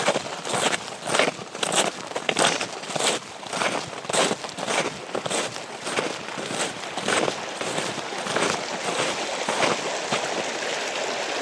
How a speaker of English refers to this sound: after the bridge here, it's kind of the base of where the waterfall is. You can hear the little rapids here at the end. Some open water.